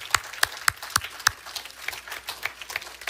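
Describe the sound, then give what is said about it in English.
People clapping to thank the Lord, with a few loud, sharp claps standing out early before the sound settles into steady, dense applause. No one speaks. “Would you give the Lord a clap and just thank him?”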